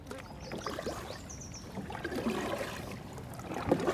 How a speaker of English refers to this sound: Okay, let's keep paddling.